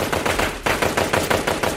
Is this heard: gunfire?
yes